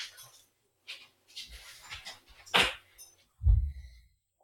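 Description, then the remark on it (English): Several short, sharp dog barks and yelps in the background, irregular and moderately loud, with a deeper thump near the end and brief pauses between. “Let me go make the dogs be quiet.”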